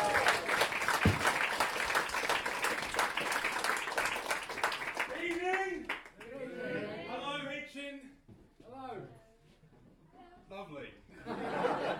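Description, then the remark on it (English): Loud, dense applause from a comedy audience at Mostly Comedy in Hitchin, welcoming a comedian to the stage, with some cheering and laughter, steady for about six seconds, then fading as a man begins speaking over the last scattered claps. “Please give it up for”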